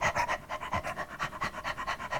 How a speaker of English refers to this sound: And as I was laying there sweating, pouring sweat, I could hear my dog, because my dog was living in my car with me. My dog was in the back seat of the car, and she was panting.